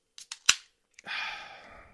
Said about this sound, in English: So I cracked open. I got for my birthday these Jack Daniel's whiskey, Jack Daniel's honey lemonade cans, limited edition.